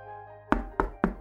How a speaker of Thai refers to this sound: เจตเคาะห้องทำงานวิรินก่อนจะเข้าไป